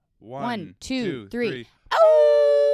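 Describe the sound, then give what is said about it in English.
Three short, wavering yelps rise and fall, followed by a long, steady, sustained howl held loudly to the end, a person imitating a dog howling. “People are sending us dog videos of their dogs hearing … do a howl sesh”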